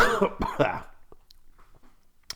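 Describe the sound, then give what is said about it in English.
A person coughs several times in quick succession, loud, with rough bursts that trail off into a quieter throaty rasp and a small clearing sound near the end. “Just coughing away.”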